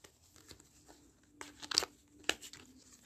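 A deck of cards being shuffled during a card game: soft papery rustling builds into a couple of quick, crisp riffling bursts, then a sharp snap, fairly quiet, with no talking.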